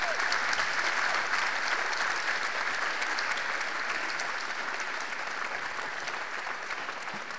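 Sustained audience applause for the candidates at the Astoria, Oregon mayor's debate, a dense steady patter of many hands clapping at an even level for several seconds, tapering off only slightly toward the end with no voices standing out.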